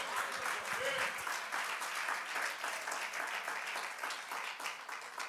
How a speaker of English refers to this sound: And I'm telling you, we ought to clap our hands unto the Lord because I thank God for that.